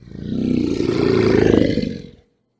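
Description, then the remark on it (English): Lions roar loudly in one deep, rumbling burst that swells for about two seconds, then cuts off abruptly. No one is speaking. “thrown into the lion's den. And the lions, they sure didn't go hungry that day.”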